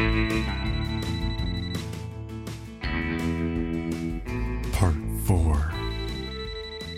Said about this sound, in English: I'm not sure how differently the night would have gone if Spencer's phone hadn't started ringing right then